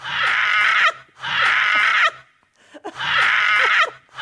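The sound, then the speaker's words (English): A person's laugh, pulled out of recorded audio and edited together, sounds like a seagull's squawk: three loud, harsh, shrill cries, each about a second long, separated by short pauses, with no other talking. “That's a bird noise. That is a seagull.”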